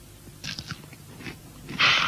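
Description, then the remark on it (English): Crunching on a mouthful of Kellogg's Corn Flakes: several crisp, irregular bites with bright crackly bursts, ending in a louder, sustained crunch. No talking. “Extra crispy activated, crunch a bunch of flakerated, appetizer licerated corn.”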